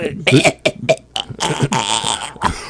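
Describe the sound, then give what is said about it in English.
A person vocally imitates another person coughing: several short, rough bursts followed by a longer raspy, strained stretch, fairly loud, with no real speech. “He goes, it's me coughing for my life and fixing my hair or wiping the sweat away.”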